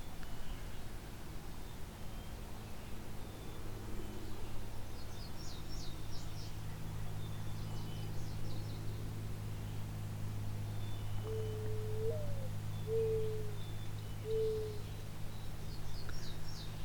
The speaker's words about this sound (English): Close up on a mourning dove.